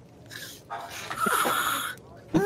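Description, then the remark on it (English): A person makes loud, exaggerated snoring noises with their voice: a short rasp, then a long rattling snore, and a brief snort at the end. “So, yeah, I snore. It's loud.”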